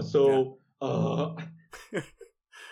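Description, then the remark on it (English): A voice imitates gasping for breath: two long, strained, voiced inhalations followed by shorter ragged, breathy pants, moderately loud, with no actual words spoken. “It's funny because they're like gasping.”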